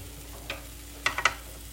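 Soft, steady sizzling hiss from a still slightly soft waffle, made from blender-mixed batter, in an opened waffle maker, with a few sharp crackles and pops scattered through it, fairly quiet with no talking.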